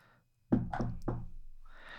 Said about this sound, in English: You're just kind of hanging out in your, you know, garden level apartment. It's a knock on the door.